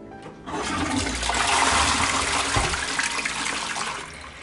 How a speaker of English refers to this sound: flush the toilet for me.